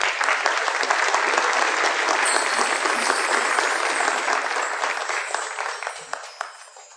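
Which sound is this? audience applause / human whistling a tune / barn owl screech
audience applause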